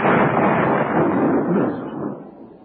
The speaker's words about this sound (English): The sound built up, terminating with a blinding splash and an explosive sound.